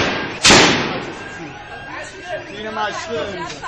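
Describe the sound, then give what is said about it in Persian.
A single loud, sharp gunshot fired at protesters cracks out, ringing briefly before a crowd's agitated chatter and shouting voices carry on underneath. “ناگهان صدای تیر می آید”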